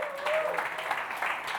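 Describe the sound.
An audience at One Church Basingstoke breaks into steady applause for a group being blessed and cheered on, a dense wash of many hands clapping at moderate volume, with a brief high whistle-like tone and faint voices mixed in.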